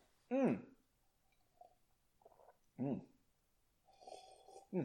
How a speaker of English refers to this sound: Sorry, that was a long one. I had to take two sips.